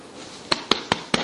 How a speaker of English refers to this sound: I was just slapping my belly.